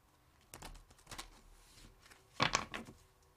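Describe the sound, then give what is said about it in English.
A deck of tarot cards being shuffled: quick papery flicks and patters in two short bursts, the second louder and sharper, with no voices. “Let me shuffle it a little bit.”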